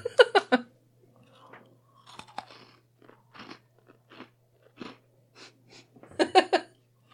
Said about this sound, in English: Well, yeah, they're just sugar cookies, but... Now that I've crunched into some... It's an ASMR moment. Ooh. Chew right into the mic a little. Hold on.